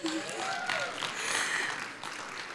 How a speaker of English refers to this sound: He spent 38 years in the Chi Alpha Ministries, and I'm just so honored to be able to welcome him up this morning. So if we all just want to give him a big round of applause as he comes up this morning.